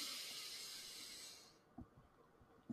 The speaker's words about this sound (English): And if they aren't, you know, we always do our little quick breathing exercise in the beginning. So let's do that right now. In through the nose.